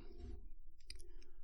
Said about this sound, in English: let me just take a sip of my tea right quick.